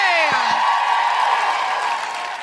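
A crowd at Vicar Street applauding and cheering, a dense, steady wash of clapping that opens with a falling whoop and carries on loudly throughout, easing slightly toward the end.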